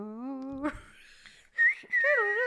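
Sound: person whistling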